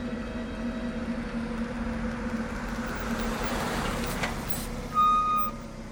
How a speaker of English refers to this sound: Did you hear that? I think I just heard a car pull up in the driveway. I believe they're home.